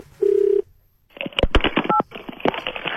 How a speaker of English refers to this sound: This is where I phone up a random person.